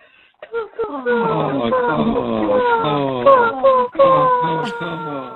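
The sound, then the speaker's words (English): A human voice in a voicemail imitates crow caws: a rapid run of harsh, descending calls that slide down in pitch, repeated back to back for several seconds at steady, fairly loud volume. “Our favorite nature sound is crows.”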